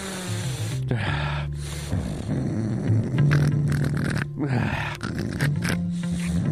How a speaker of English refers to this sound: Oh, that was more like a snort, really.